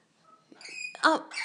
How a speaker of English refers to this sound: the birds are saying that they're quite concerned for your well-being.